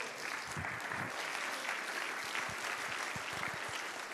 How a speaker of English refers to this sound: Oh, clap your hands and praise Him.